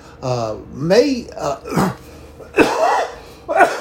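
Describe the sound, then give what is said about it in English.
A person coughs several times, harsh bursts mixed with throaty voiced sounds, as if clearing the throat, spread unevenly over a few seconds. “You know, really, I don't cough to start this.”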